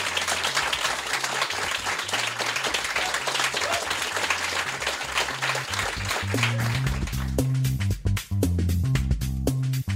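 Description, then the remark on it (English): Sustained audience applause for a panel of speakers at an event, a dense wash of many hands clapping at steady loudness, with music fading in underneath toward the end. “Let's give all our panelists a round of applause.”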